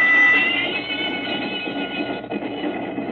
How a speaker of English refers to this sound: The train left Chicago and headed north, and then slightly west over Illinois and Wisconsin.